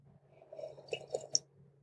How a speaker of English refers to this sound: Oh, I forgot that I have my coffee in here. I'm going to take a little sip of coffee.